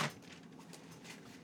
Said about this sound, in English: Yeah, that noise right there. You're doing it. Oh, the pages flipping chair? Yeah. What does the pastor always say? Turn. I just love the sound of those pages turning